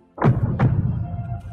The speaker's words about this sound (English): So what does her heartbeat sound like?